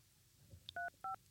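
Two crisp telephone keypad DTMF tones beep in quick succession, each a short dual-pitched press, preceded by a tiny high click, over a quiet low background.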